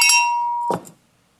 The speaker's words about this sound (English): And I've often wondered, so I'll have to ring my bell,